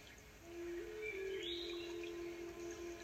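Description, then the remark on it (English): Faint, distant birdsong drifts over a quiet outdoor background, a few thin chirps and whistles rising now and then above a steady low hum. “You can hear birds and water far off in the distance somewhere.”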